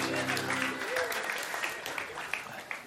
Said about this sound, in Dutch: Can we give the band a hand? Laten we de band een applaus geven. Ze hebben geweldig iets gedaan.